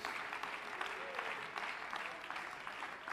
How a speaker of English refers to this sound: For this, we ought to praise Him today. For this, we ought to give God a hand clap of praise this morning.